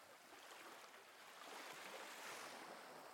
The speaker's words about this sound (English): But you can hear the ocean. Walk towards the sound of the ocean.